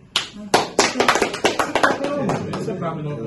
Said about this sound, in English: No, clap it up.